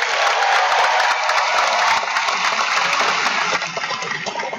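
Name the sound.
audience applause and cheering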